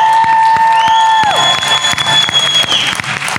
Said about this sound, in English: And with that, a big round of applause for our panelists. Thank you for coming tonight.